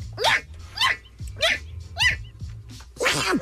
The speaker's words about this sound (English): I don't even know what that is. That's a Pomeranian sneezing.